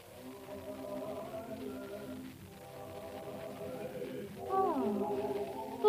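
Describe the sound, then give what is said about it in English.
A group of carolers sings a slow, sustained Christmas tune, their blended voices holding long notes at a steady, moderate volume, swelling a little louder near the end as the pitch shifts. “Listen, Al, it's the Christmas carolers.”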